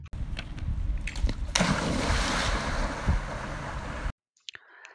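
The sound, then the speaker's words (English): A springer spaniel leaps into water near Barber Surgeons Hall in the city with a loud splash, followed by a few seconds of churning, sloshing water that cuts off abruptly, leaving only faint scattered sounds. “there's water near Barber Surgeons Hall, and as a little added bonus, he sent us this great clip of his Springer Spaniel clearly leaping into it.”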